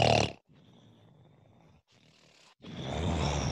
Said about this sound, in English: So when they're passed out, yeah. you put them on live radio, and all of a sudden you just let them snore into the phone.